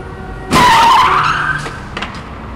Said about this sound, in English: Someone ran a red light and a bus actually crashed into a Honda Civic right in front of me. Everyone was okay, and I ended up with a piece of recorded sound that had no place in my story, or any other story for that matter, until now.